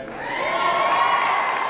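A packed crowd of rallygoers in the State House rotunda cheers and shouts in a sustained, loud roar of overlapping voices with a few high whoops, holding steady for a couple of seconds.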